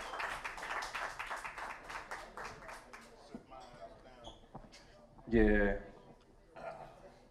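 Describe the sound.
A short burst of audience clapping fills the opening seconds with quick, overlapping claps, then fades as voices take over and someone lets out a loud whoop.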